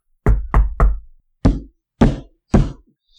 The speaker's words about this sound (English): Balthazar Thieves Guild. I guess we found it. I'll knock on the door.